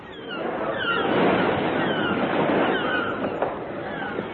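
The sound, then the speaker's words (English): An electric rowing boat carrying two strike breakers surges across open water on its way from England: a steady, broad rush of engine and splashing sea that swells in the first second and stays loud and continuous throughout, with no talking. “To break the strike, I had sent for two professional strike breakers, who are even now on their way from England by electric rowing boat.”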